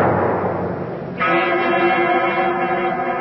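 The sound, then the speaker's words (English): A large bell at the great door of Carrig Cleaner is pulled: a second of rough, scraping noise, then a sudden loud clang that rings on as a rich, sustained metallic tone with layered overtones. No voices. “I reach out and pull the bell. Even the bell is familiar, although I cannot quite place where I've heard it before.”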